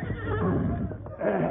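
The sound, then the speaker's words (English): A horse whinnies loudly, a wavering, shaky neigh that dips briefly and then rises again in a second burst, with no voices present. “Get you to my horse outside.”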